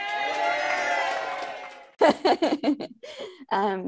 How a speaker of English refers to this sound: Insert applause.